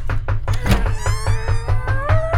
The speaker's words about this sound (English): You can stop knocking the doors open.